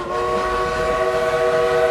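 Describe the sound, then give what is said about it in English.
A working coal-burning steam locomotive, one of the last in the world that burns coal, sounds a loud, steady whistle with several layered tones, held for the full two seconds over a constant rumbling, hissing roar from the engine. No one speaks. “An actual working steam engine. It's one of the last in the world that burns actual coal.”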